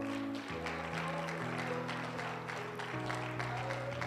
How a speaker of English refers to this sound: Will you give the Lord a hand clap of praise one more time?